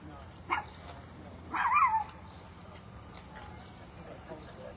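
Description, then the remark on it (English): A dog that a woman has just put down gives a quick sharp bark, then a longer, whiny yelping bark a second later, against a steady outdoor background murmur. “And she put her dog down.”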